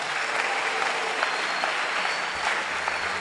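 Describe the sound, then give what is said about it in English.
An audience stands and claps their hands for the Lord, a dense, steady wash of many overlapping claps at a fairly loud, even level throughout, with no voices standing out. “Stand to your feet and clap your hands for the Lord.”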